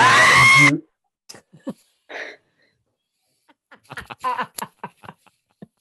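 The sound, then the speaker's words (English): A person lets out a short, loud scream of fright right at the start, then it cuts off into quiet broken by scattered small clicks, rustles and murmurs. “And as you scream, a whole bunch of bugs start towards you.”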